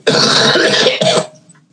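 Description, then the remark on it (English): A person walking past coughs loudly with a harsh throat-clearing rasp, two quick bursts in a row over about a second, then trailing off into quiet. “And then excuse me, and then I just walked past in the background coughing.”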